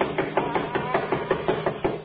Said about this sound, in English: I'll do the knocking. Doesn't seem to hear us. He'll hear me.